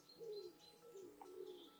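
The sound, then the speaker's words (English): Wood pigeons cooing softly in a village at dawn, low hollow coos rising and falling in a slow, steady phrase, quiet against a faint outdoor hush, with no voices. “And the village wood pigeons are waking up.”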